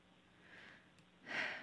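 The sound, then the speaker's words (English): Soft breathing over a phone line, a faint breath followed by a louder, hissing exhale, with no one talking. “Well, I know you're there. I can hear you breathing.”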